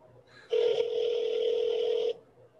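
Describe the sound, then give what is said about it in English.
A single steady electronic ring from a phone line, about a second and a half long, sounding clearly through the handset with faint background noise before and after. “Damn, he won't even answer you, bro.”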